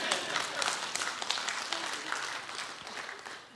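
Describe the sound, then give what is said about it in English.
A large crowd at the Roots church applauds and cheers for the women who work hard in the church, steadily for a few seconds, dense clapping with scattered cheers mixed in, holding even throughout. “Yeah, you can cheer for that too.”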